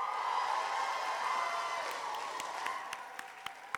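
A crowd cheers and applauds loudly, a dense wash of clapping and voices that gradually thins out, leaving scattered individual claps sharply popping toward the end.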